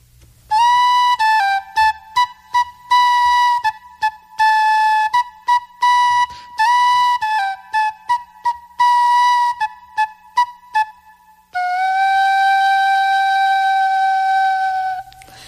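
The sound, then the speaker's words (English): A solo Irish whistle plays a lively tune of quick, crisply tongued notes, closing on one long sustained note. The sound is bright and loud, with no voices. “I play Irish whistle. Yeah, I will play whistle.”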